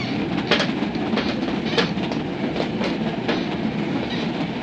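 A westbound passenger train rolls steadily along the rails with a continuous low rumble, broken by irregular rhythmic clacks and brief metallic clicks from the wheels. No voices are heard.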